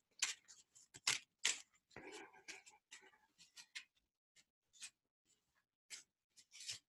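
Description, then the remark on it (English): Small tarot cards being handled and shuffled: a quick run of crisp snaps and flicks, a brief papery riffle in the middle, then scattered lighter taps, with no voices. “Okay, here's the second card.”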